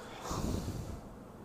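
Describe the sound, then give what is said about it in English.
A single sniff of a lemongrass essential oil, one sustained breathy inhale through the nose lasting under a second, then quiet. No talking. “Let's sniff.”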